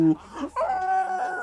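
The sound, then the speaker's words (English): A person lets out a loud, sustained howl imitating a dog or wolf, rising into a long wavering tone that holds steady for about a second. “That's Mr. Dog. Mr. Dog himself. Half man, half dog wolf.”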